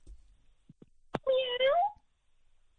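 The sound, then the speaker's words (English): A person voices a single drawn-out meow, imitating a cat, fairly loud, with the pitch rising then dipping at the end. A few faint clicks come just before it. “Meow.”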